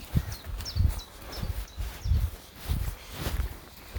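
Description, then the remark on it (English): Steady footsteps crunch along frosty, frozen ground on a cold day with no rain, at an even walking pace, about seven dull thuds in four seconds, while faint high bird chirps flutter in the background. No one speaks. “Gotta keep on walking.”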